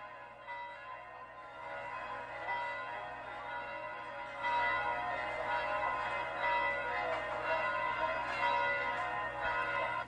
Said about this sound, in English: There's a beautiful little church at the beach, and when the bells peal in the square, it's magic time, okay? I want you to hear it for a second, all right?